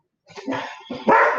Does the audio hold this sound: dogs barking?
yes